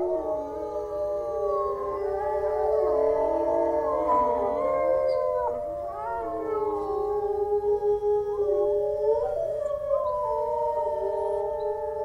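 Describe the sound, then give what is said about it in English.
Several wolves howl together in a long, overlapping chorus, their drawn-out wavering tones rising and falling continuously for the whole stretch, loud with no talking. “Occasionally they call like this because you're during a hunt.”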